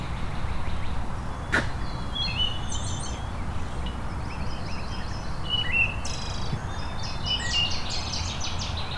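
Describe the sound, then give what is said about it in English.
A waterthrush and a red-winged blackbird sing in short, bright, repeated phrases over a steady background rush of outdoor noise, clear with no one speaking. “There's our water thrush again. And a red-winged blackbird.”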